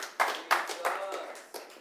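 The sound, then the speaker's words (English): A handful of church audience members clap sparsely, a few separate, reverberant claps scattered across two seconds, with faint voices murmuring underneath. “Anybody else clap for that?”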